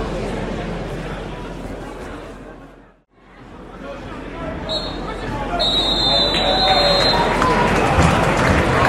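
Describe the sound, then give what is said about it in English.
A referee's half-time whistle at a 0-0 football match between Doncaster and County sounds over the steady hum of the crowd: a long, shrill, high-pitched blast lasting a few seconds, clearly audible above the murmuring stadium noise. “There's the half-time whistle.”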